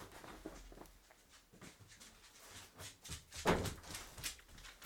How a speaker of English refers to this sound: And there's your other dog at the door.